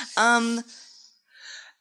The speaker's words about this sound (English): Oh, it really hurts to sneeze. I'm sorry.